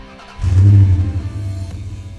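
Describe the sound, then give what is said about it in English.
The engine of a vintage 1992 camper van, on a road trip from Ontario to British Columbia, roars to life with a sudden, loud, deep rev, then eases back into a steady low rumble. No one speaks. “It's a show about my trip from Ontario to British Columbia in a vintage 92 camper van, and I invite you to come along for the ride.”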